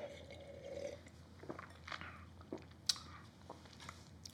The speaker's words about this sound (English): The part of this that I consider to be, and I'm going to take a sip, hold on.